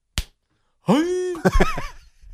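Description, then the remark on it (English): A single sharp hand clap, made to imitate a baseball hitting a catcher's glove on a pitch, rings out alone, followed after a pause by a loud, drawn-out vocal shout. “Now the clap is the sound of the ball hitting the glove.”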